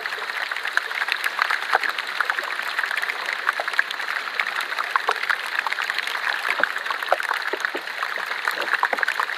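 Melting glacier ice fizzes and pops in water as gas trapped under pressure bubbles out, a dense, steady crackle of countless tiny bursts with sharper snaps scattered throughout, continuous with no voices.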